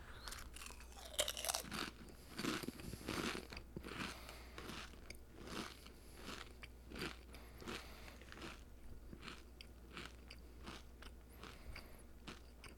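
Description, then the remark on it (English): Crunching of ketchup-flavored Doritos tortilla chips being chewed, a rapid series of sharp, crackly bites that start loud and settle into steady, quieter chewing with no talking. “Anyway, Doritos, and we got some ketchup flavored Doritos.”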